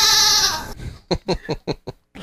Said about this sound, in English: That's where you play your goat sound. My bah! Hey, I've got that pretty handy.